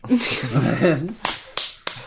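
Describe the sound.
A voice talks briefly, then three sharp, separate hand claps follow at a steady pace, close and fairly loud, with short pauses between them rather than sustained applause.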